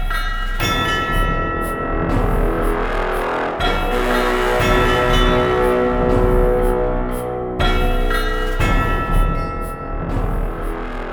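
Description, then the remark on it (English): A short musical jingle for the Lore You Should Know segment, full of bright, ringing chiming bells, played loud and continuous over a sustained instrumental backing, with no voices. “Make with the awesome song that has the chiming of bells in it, please.”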